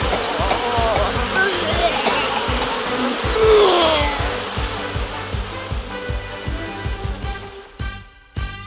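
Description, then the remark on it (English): A dense, continuous buzzing of many bees swarms, droning loudly throughout with a steady pulsing texture, briefly cutting out near the end. “Bees!”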